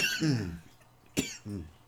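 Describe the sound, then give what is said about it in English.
A rough cough bursts out after smoking, followed by a short harsh hack and a raspy throaty exhale, three quick bursts in under two seconds with no talking. “They make you cough.”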